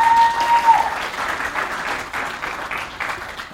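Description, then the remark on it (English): A crowd claps steadily for a volunteer who has come up to help, a dense wash of many hands applauding at moderate loudness throughout, with a brief whistle-like tone at the very start. “Can we give him a big round of applause?”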